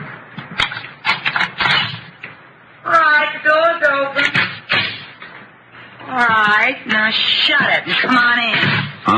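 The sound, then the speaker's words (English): The door of hotel room 306 is unlocked with a few sharp clicks and rattles, then swung open, while voices talk over and after it. “Right, now shut it and come on in.”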